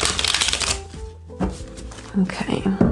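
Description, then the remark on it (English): A deck of tarot cards being shuffled: a dense, crisp riffle for almost a second, a brief pause, then more shuffling and card slaps with a faint murmuring voice underneath. “Get one more shuffle.”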